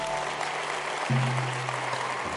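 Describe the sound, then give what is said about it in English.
A church audience claps for the Lord during a morning service in a steady, dense wash of applause, with a sustained low organ-like tone entering partway through beneath the clapping. “Let's get a Lord a hand clap this morning.”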